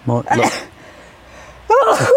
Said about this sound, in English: She's back on the sneeze today, which we thought we'd left in Hampshire.